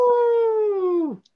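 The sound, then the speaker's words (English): A person voices a single wolf-like howl, a steady, loud tone held for about a second that sags slightly before dropping off sharply at the end. “No, Dallas has got a lone wolf again.”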